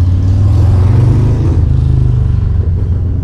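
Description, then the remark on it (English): A big motorbike rumbles loudly, its deep throbbing engine revving steadily for a few seconds with no voices present. “So that's a big motorbike.”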